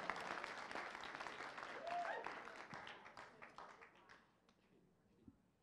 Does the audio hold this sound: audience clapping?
yes